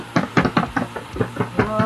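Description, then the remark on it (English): A makeshift drum roll of about nine quick, even knocks, like fists or hands thumping a tabletop, fairly loud and steady across two seconds, with a faint voice murmuring underneath near the end. “So, I'm going to do my shitty drum roll.”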